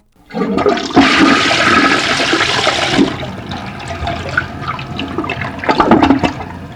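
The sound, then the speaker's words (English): A toilet flushes with a loud rushing surge of water for a couple of seconds, then settles into gurgling and trickling as the tank refills. “And flush that pain away.”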